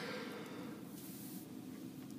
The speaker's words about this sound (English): Excuse me as I yawn. It is late at night. I am very tired.